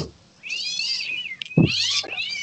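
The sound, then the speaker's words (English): A cat meows loudly and insistently, a long drawn-out yowl followed by a second rising, strained cry, with a low thump between them. “I saved your cat.”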